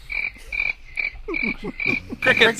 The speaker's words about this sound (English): Crickets. Crickets. We'll just use crickets. Crickets?